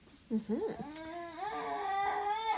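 A baby babbles and fusses, with short rising coos breaking into a longer, sustained whiny wail that holds a steady pitch, moderately loud, with no other voices present.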